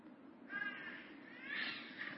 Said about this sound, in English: as …'s screaming right now. Not screaming, but squawking